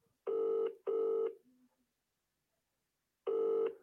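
A telephone ringing tone purrs in a double burst as an outgoing call is placed, falls silent for a couple of seconds, then starts its next double ring. It is steady and fairly loud, with no voices.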